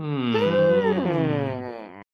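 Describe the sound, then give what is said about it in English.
Several voices hum together in one sustained, steady tone lasting about two seconds, with slight pitch wavering and overlapping tones before it stops abruptly. No words are spoken. “Should we make a hum noise at the same time on three?”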